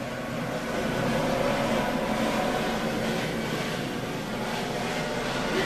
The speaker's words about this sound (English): Okay, to be fair, one of my neighbors is a Coast Guard pilot, and he always does fly over us because he lives right next door because his kids love it.